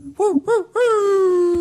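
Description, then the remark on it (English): A person imitates a wolf howl with their voice: two short rising-and-falling yips, then one long sustained howl that slowly sinks in pitch. Moderately loud, with no speech over it. “We're having a howling great time here in the Paracast, making fools of ourselves.”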